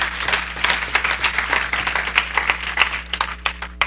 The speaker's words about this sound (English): Somebody give the Lord a hand clap of praise, and we'll conclude this thing.